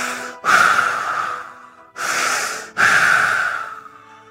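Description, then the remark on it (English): A voice imitates the medical ventilator of a boy on a breathing machine in a bed: three loud, hissing breath sounds in a steady mechanical rhythm, a long push followed by two shorter ones, with no talking. “He's on a breathing machine. I shook his hand. The ventilator's going, and it was showtime, right?”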